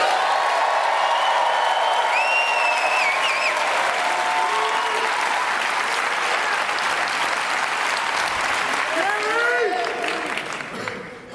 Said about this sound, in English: So at the same level of excitement that you just gave me, let's clap it up for the volunteers.